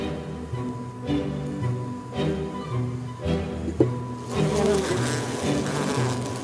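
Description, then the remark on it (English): A dense, steady drone of a honeybee colony buzzing during a hive inspection, with the hum swelling louder toward the end as the colony stirs. No one speaks. “So I just pull this out to inspect the bees?”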